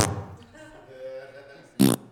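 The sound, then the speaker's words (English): A short, loud raspberry blown with the lips, a buzzing thumbs-down fart noise made by a voice, preceded by a quieter hum and a brief opening burst. “Did you just give the Church of the Flame a thumbs down fart sound?”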